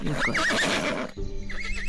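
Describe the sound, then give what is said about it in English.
A horse whinnies loudly with a wavering, high-pitched neigh, then hooves clop in a quick, uneven rhythm as a shorter neigh rises again near the end. Fairly loud, with no talking. “You have a little pony. My little clippity-clappy little baby. I got a war horse.”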